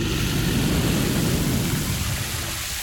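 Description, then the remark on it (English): A loud, continuous roar of a flamethrower blast from Zogzilla, a deep rumbling whoosh with a hissing edge that holds steady for about three seconds without a break. “Hurry, Zogzilla's about to do a flamethrower.”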